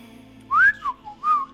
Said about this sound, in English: Are you being cheeky on the phone? No, whistling.